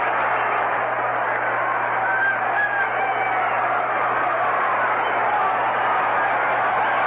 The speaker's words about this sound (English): This crowd going wild again, picking up where they left off Sunday.